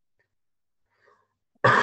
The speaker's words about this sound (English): sorry, I've got a cough.